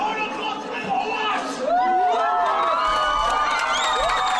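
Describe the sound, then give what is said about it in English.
A crowd of Palestinian supporters cheers and claps loudly in response to a man yelling in German, with high whoops and shouts rising over a dense babble of voices that swells after the first second and a half and stays strong to the end. “Followed by cheering and clapping from the Palestinian supporters.”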